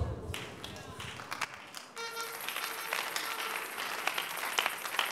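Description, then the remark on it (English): An audience claps, starting with scattered sharp claps for about two seconds before swelling into a dense, steady wash of applause that stays loud to the end. “I say that again for those who are not clapping.”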